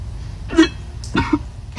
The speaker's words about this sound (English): She almost puked.